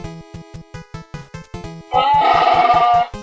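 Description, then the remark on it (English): A person imitates a Wookiee roar: one loud, raspy, warbling cry lasting about a second, over a steady plucked rhythmic tune that plays throughout. “That was a Wookiee.”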